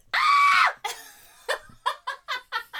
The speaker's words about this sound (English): Every day I turn on my silly little mic and I do my silly little scream.